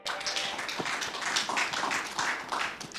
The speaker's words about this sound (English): Let's give a round of applause for the Dental Business Panel.